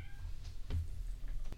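A single faint, short meow from a cat somewhere in the house, over a low steady background hum with no one talking.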